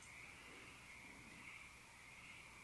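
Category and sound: animal, frogs croaking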